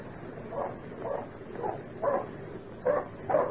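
A dog named Badger barks repeatedly, about six sharp woofs at an uneven pace, moderately loud, with no voices alongside, by the edge of the old tin working.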